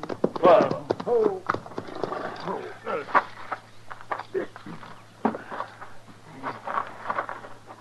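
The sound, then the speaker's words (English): Horses' hooves clip-clop in an uneven, slowing rhythm as riders stop to rest their horses, coming to a halt, with loud snorting and whinnying early on over a low, steady hum. “So we better breathe our horses a little. Let's stop here.”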